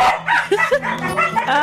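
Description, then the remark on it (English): Puppies Princeton and Athena bark and yip in a radio studio in a quick, excited string of high-pitched yelps, fairly loud, with a few whiny squeaks mixed in and no talking. “We're having a puppy party in the studio right now.”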